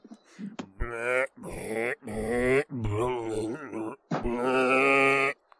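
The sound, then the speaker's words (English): A loud voice imitates the Boomer zombie burping and gurgling: a string of wobbling, throaty, drawn-out vocal groans in four or five bursts with short breaks between. “But he was always easy to he was always easy to spawn out because you'd hear him burping and gurgling.”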